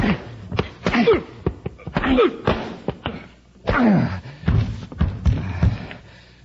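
A scuffle of sharp, heavy thuds and blows, punctuated by strained grunts and gasps, with a final punch landing amid the commotion that knocks a man unconscious.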